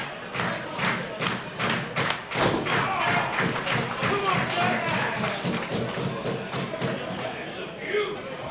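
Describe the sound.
In a tag team wrestling match, a wrestler stomps on his opponent's ankle to set up a leg submission: a steady run of heavy thuds on the ring mat, roughly one or two per second, over a constant roar of crowd noise and some indistinct voices.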